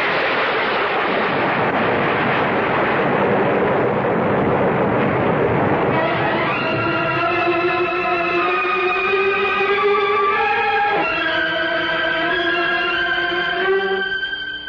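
A loud, sustained roar of a volcanic eruption explosion, after a bolt of lightning strikes an iron helmet, fills the first several seconds, then gives way to a steady ringing, chord-like drone that carries on to the end. No one speaks.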